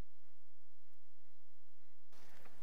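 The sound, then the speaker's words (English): After about two seconds of near silence, a speaker giving a Bible talk lets out a single harsh cough abruptly near the end, fairly loud against the quiet, with no talking. “I'm just going to have another cough.”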